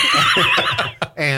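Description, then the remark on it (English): A man's voice imitates a horse whinny, a loud, wavering, high-pitched neigh that quivers rapidly, then breaks off briefly before a final nasal, buzzing burst. “Means I'm a horse.”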